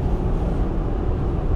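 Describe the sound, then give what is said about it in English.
A steady, loud low-frequency rumble of road and engine noise from inside a car cruising at 76 miles an hour, with no voices and no breaks in the drone. “This is the Leadership Line podcast number 45, current speed 76 miles an hour.”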